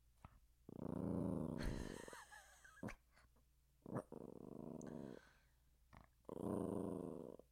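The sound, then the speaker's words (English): A dog, Dog Laura, growls and grumbles in three long, rumbling bursts separated by short pauses and small clicks, fairly loud, with no talking. “It is the sound of their unrest. I get it. Of their disapproval.”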